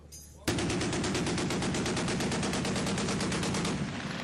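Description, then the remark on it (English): A loud, sustained burst of machine gun fire from American troops erupts suddenly and rattles in rapid, evenly spaced shots for nearly four seconds before tapering off, with no voices present. “Then they opened up with a deafening volley of machine gun fire.”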